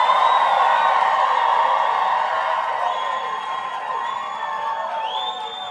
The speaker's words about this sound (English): And we want you to see this whole crowd here. So they're going to greet you as well.